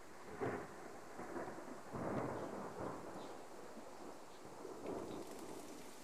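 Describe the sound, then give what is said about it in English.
Thunder rolls and rumbles in several low, heavy bursts over a steady hiss of rain, the booms swelling and fading without any voices. “Thunder.”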